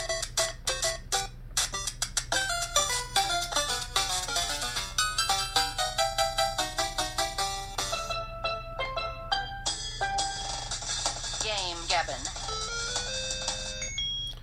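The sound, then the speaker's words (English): A ringtone plays from the Red Alert Social Awkwardness Fake Phone Call Alarm, a phone app that sends a fake call: a bright electronic melody of quick, rhythmic repeating notes that shifts partway through into longer sustained tones with a warbling slide. “Today's game, Gabbin, sponsor is an app that monitors metrics like heartbeat and palm sweat and send a fake phone call to get you out of awkward situations.”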